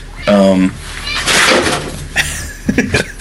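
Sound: cat yowling loudly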